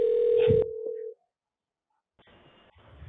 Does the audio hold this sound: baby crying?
no